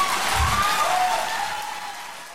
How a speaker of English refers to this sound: The first thing I want to point out is just the applause that Michelle Williams gets when she says that she exercised the right to choose.